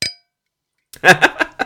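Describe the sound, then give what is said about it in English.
A single bright clink of glasses touching in a toast, ringing out briefly, then near-silence before a few short voiced sounds, like murmuring or laughter, follow. “So virtual cheers to you, mate, and we'll have a an in-person cheers now, guaranteed.”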